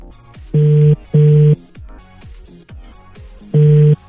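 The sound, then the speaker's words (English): An outgoing call's ringing tone comes through the line: a loud double burst of steady purring tone, a pause, then the double ring starting again, with no one speaking. “All right, it's ringing.”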